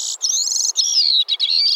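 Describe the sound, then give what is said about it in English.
A Bicknell's thrush sings a high, thin, warbling song of quick descending phrases with brief pauses, clear, with no other sounds around it. “The Wake-up Call: Bicknell's Thrush”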